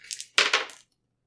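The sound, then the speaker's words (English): Dice clatter and tumble across a hard table in a quick burst of hard rattling clicks that stops abruptly, followed by silence. “I do have different dice, so this could work out a whole lot.”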